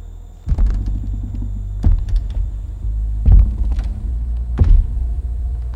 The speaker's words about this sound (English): The heavy creak of this massive man walking slowly down the dock. Like he had all the time in the world.